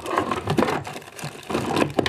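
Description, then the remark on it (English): Dry, crinkly rustling of paper slips with written lists being stirred and shuffled in a bowl, a continuous scratchy swish with a few sharper crackles, no voices. “I've written my lists on bits of paper, and I've put them into these two bowls.”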